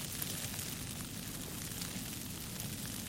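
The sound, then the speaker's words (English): Snow patters steadily onto a parka, a dense, even crackle of tiny soft hits over a low rumble, with no voices and no pauses across the few seconds. “Snow as it patters onto my parka.”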